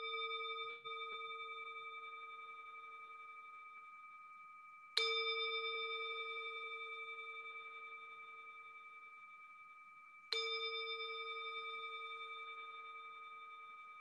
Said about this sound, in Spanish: Vamos a iniciar escuchando el sonido del cuenco.